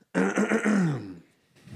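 A loud, drawn-out burp lasting about a second, its croaking pitch sliding steadily downward before trailing off into faint background noise.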